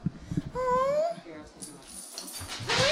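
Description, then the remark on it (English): A dog named Buddha whimpers as a visitor greets it in an apartment in Rogers Park, a drawn-out high-pitched whine rising in pitch, then a shorter whine near the end, with soft shuffling and low background noise between them. “As I walked inside and greeted her dog, I was mesmerized by the beauty of her place.”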